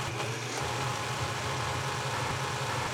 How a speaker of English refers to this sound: So all right, we're going to put another 3/4 cup of whole milk into the blender, and now I'm blending it until smooth. And that doesn't take more than 10 seconds to get this smooth.